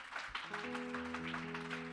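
An audience at a church worship service claps hands unto the Lord in a steady, dense patter, while sustained organ-like tones swell in underneath. No one speaks.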